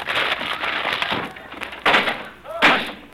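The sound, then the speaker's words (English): A wooden door is smashed in with a splintering crash as someone walks through it. Crackling, cracking wood builds up and ends in two loud impacts. “Just a minute, I'll open the door. Never mind, I'll walk through it.”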